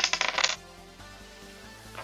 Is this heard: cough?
no